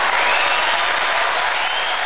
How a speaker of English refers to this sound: Everybody, please give a big round of applause to Scott Asai.